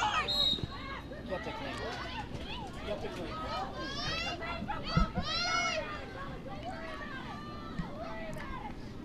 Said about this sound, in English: The crowd mic can hear all of the comments. Let's hope it's all G-rated.